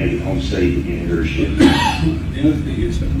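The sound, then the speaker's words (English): A man who sounds ill coughs, with a sharp burst in the middle standing out against a busy background of murmuring voices and room noise, followed by a softer throaty follow-up. “That was him coughing.”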